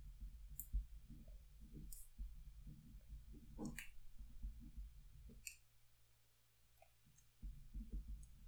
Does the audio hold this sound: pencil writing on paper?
yes